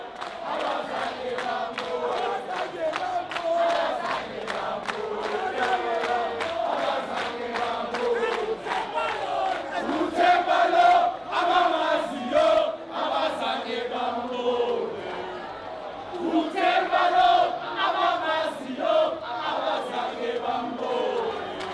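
A cricket crowd in South Africa sings a chant about cricketer Temba Bavuma, "This is Temba, for those who know," a dense, steady wall of many voices with rhythmic swells and occasional louder surges, loud throughout with no single speaker standing out.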